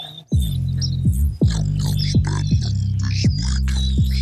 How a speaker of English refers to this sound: It's got like the birds in the background and that weird noise. It's kind of cool.